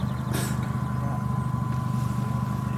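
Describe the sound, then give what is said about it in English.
A modified car with a fat exhaust and drop-down suspension passes with a deep, throaty engine drone that rumbles steadily throughout, loud, with a brief hissy burst near the start and no voices. “Yeah, this is the fat exhaust and drop down suspension.”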